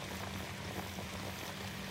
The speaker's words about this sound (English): I know you can hear that, the sweet sounds of those artichokes bubbling in that oil right there.